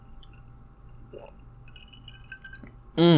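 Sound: sipping moonshine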